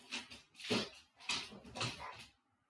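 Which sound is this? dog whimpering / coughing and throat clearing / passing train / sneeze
dog whimpering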